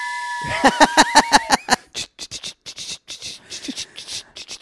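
A steam train whistle blows a steady, high, multi-toned note over rapid rhythmic chugging bursts, then the whistle drops away and the chugging carries on in quicker, softer puffs.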